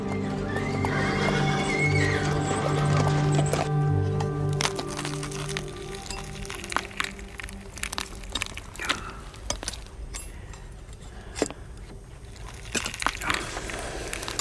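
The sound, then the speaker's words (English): A horse neighs loudly with a long, wavering whinny, then hooves clop in an irregular rhythm on a hard surface, interspersed with sharp cracks and knocks. “I could be that fly whisked away by the horse's tail.”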